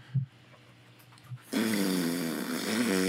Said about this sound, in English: To paraphrase, it's a fart noise.